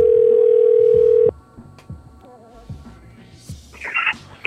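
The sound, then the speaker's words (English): A loud, steady telephone tone drones for just over a second as a call is placed back to a woman, then cuts off, leaving quieter background sounds with faint warbling tones. “I call her back one more time.”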